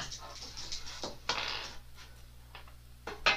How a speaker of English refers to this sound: He's up there rolling all these dice and it's like... He's rolled it like 5 times in a row and then he... and looked at me and smiled.